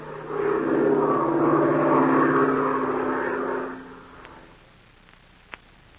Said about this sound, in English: The engine is laboring as the plane climbs at a steep angle.